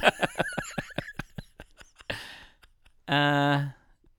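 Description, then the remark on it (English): A big yawn: a breathy drawn-in breath followed by a loud, voiced, drawn-out groan, coming after a quick run of short, clipped vocal sounds. “You've literally just had the biggest yawn in the middle of quite a compelling list of options for treatment.”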